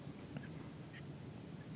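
duck quacking

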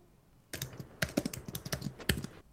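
household object, computer keyboard typing

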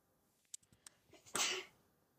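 human body sound, a sneeze

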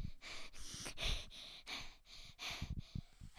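human body sound, heavy panting

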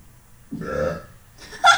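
human body sound, loud burp

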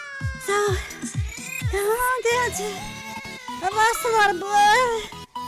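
animal, cat yowling

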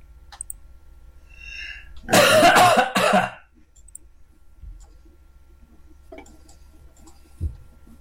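human body sound, cough

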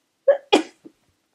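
human body sound, a person sneezing

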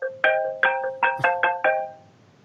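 signal or alarm, incoming phone call ringtone

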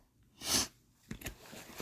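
human body sound, sniffling

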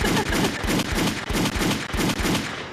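sound effect, gunshot sound effect

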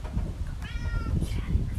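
animal, cat meowing

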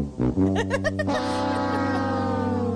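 sound effect, fart sound effect

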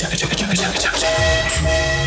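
vehicle, train horn

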